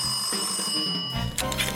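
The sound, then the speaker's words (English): A telephone in an office rings with a bright, metallic bell tone, a steady shimmering ring for about a second before it shifts into a harsher, noisier burst. No one speaks. “It was just another day in the office when the call came in.”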